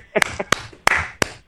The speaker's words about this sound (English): All of us are just giving you a clap. Good answers.